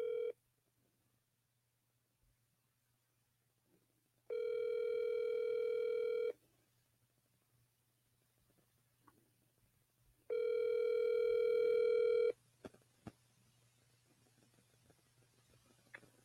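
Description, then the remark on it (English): A telephone ringback tone of an outgoing call to a lawyer's mobile phone sounds through an earpiece: a steady electronic tone with bright harmonics plays for about two seconds, pauses four seconds, then repeats, followed by faint clicks and handling noise. “We're going to call him right now.”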